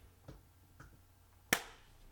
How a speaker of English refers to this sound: Okay, so I'm gonna clap to signify when it starts up again.